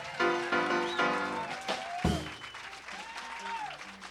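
Sustained audience applause, dense and steady clapping lasting several seconds, with voices and a few tonal musical or vocal sounds mixed in beneath the noise.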